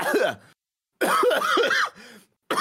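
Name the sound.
person imitating a cough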